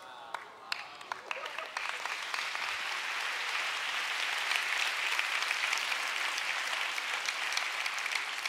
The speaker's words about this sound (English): I was hoping that you would appreciate that, so the hand clap really makes a difference for me.